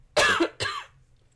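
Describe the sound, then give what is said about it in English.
Two quick, harsh coughs, one right after the other, with a short gap between them and no talking. “Another cough break.”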